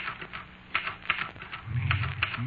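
Typewriter keys clack in a quick, irregular run of sharp taps, moderately loud, with a low hum rising near the end.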